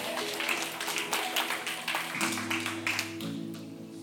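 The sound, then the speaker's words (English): An audience claps for about four seconds, a dense, steady patter of many hands at moderate loudness, with a low sustained hum or tone running underneath. “That deserves a clap.”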